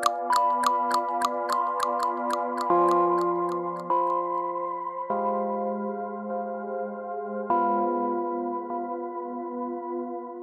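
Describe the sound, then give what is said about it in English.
A quick, steady run of clock-like ticking clicks plays over a sustained droning chord, the ticks fading out after a few seconds while the tones continue, shifting pitch. “I'm now writing this at home, because I'm starting to hear clicking too, and there's no clock in my office.”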